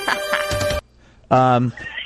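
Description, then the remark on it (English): A voice imitates a telephone ringing with two short, loud, tonal bursts separated by a brief pause, sounding like a playful mock ring rather than a real phone. “Is that how the phones ring, by the way, at Teshwan Studios?”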